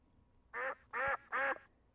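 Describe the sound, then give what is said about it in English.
Three loud, nasal duck quacks in an even rhythm, each about a quarter second long, clear against a quiet background. They sound like a person's voice imitating a duck. “And this is my great quack to thee.”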